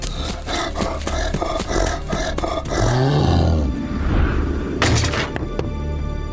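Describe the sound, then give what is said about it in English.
A deep, rumbling roar from an enormous bear-like creature with long arms swells midway through, surrounded by sharp crashing and shattering impacts at the start and again near the end, with no voices. “You guys are shocked, actually, at how athletic and spry this enormous, like, bear creature is.”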